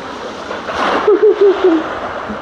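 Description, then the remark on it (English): Small waves on a lake lap and splash softly in a steady watery wash on an afternoon, with a brief low murmur rising over it midway through. “She wanted to hear the lake, the waves on the lake.”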